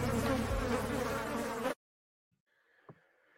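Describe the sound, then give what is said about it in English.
A loud buzzing of a bee or wasp drones steadily for under two seconds, then cuts off abruptly into near silence with only a faint, brief trailing sound. “It's now time for the things that sting”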